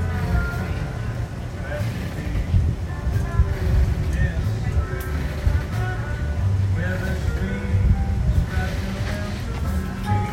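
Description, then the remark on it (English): A steady low rumble of a boat on the water, with faint creaks and groans of wood rising above it, and muffled voices murmuring in the background. “Boat rocking and creaking.”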